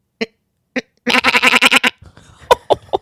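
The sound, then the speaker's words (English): A sheep bleats in a long, wavering, pulsing cry, preceded by two short clicks and followed by a few softer bleats and rustling noises, all fairly loud. “Oh, that's such a great sheep. Just listen to it again before you go on with your thought.”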